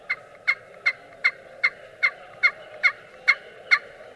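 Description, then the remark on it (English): A turkey call scraped on its glass side, pushed away across the glass with barely any pressure, giving a steady run of about eleven sharp, high-pitched yelps spaced evenly, each a bright rasping note over a faint hum, with no talking. “But, yeah, go ahead and hit a couple of calls on there. Let the audience. This is the glass side.”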